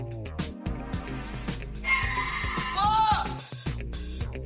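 A single drawn-out cow moo rises over an upbeat musical backing, lasting about a second and a half before the music carries on alone.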